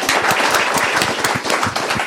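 A crowd breaks into a huge round of applause for a participant, many hands clapping in a dense, continuous patter at an even loudness throughout, with no voices rising above it.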